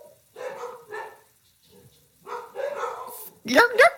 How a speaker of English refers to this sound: The animals started barking when we said that. We did.